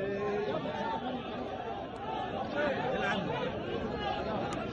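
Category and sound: crowd, crowd shouting and cheering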